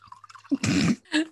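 Wine pours into a glass in a short burst of splashing and gurgling, followed by a brief second trickle, with no one talking.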